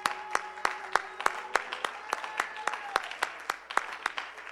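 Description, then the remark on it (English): An audience claps their hands in a quick, fairly steady rhythm, sharp claps repeating over a low murmur of voices and a faint sustained tone in the background. “If so, why don't you clap your hands.”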